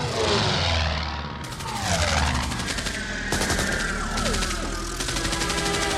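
gunfire

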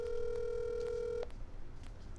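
telephone dialing a call

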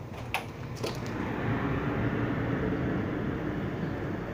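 airplane flying overhead

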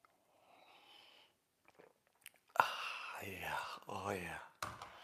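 sipping coffee

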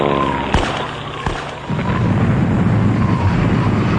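bomb explosion

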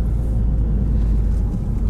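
car driving

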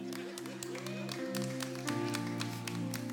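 audience members clapping

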